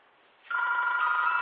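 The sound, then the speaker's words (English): A telephone rings, its steady electronic trill starting abruptly after a brief quiet moment and continuing loud with no one speaking. “Maybe to answer a phone call.”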